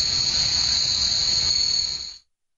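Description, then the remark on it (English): A steady, shrill cricket chirp sound effect rings continuously for about two seconds, loud, with a faint rustling hiss underneath, then cuts off abruptly into silence. “Yeah, that's right. Crickets.”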